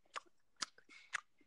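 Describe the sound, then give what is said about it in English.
Wet gum chewing with sharp smacking chomps, three or four loud bites in quick, uneven rhythm over a quiet background. “Stop chomping your gum.”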